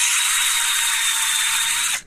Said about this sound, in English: Just running a drill bit through a whistle. Sometimes with those, sometimes with the wood.